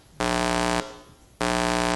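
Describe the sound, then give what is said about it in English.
A loud, harsh wrong-answer buzzer sounds twice, two flat low-pitched buzzes of about half a second each separated by a short pause, with no talking. “What happened to the pretty tone I heard yesterday? That's what I did. That is saying to me, wrong answer.”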